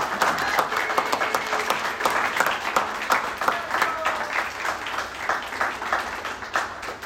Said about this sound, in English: And a round of applause from everybody.